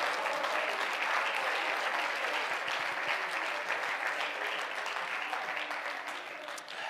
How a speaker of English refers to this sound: Clap your hands again and praise Him tonight.